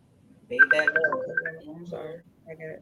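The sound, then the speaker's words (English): A mobile phone rings with a short, steady electronic tone that sounds for about a second while a person keeps talking over it, fairly clear. “I got my phone trying to ring.”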